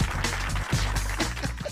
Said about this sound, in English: How many people you know get a round of applause when they wake up in the morning? Not many. I feel very fortunate about that.